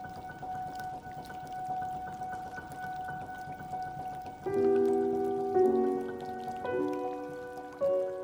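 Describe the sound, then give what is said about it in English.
A steady, soft hiss of cold drizzling rain in New York City on Saturday, March 4th, 1944, as people rush to get indoors, runs throughout, and about halfway through, sustained droning tones like horns or sirens rise and layer over it. “A cold drizzle as people rushing to get indoors.”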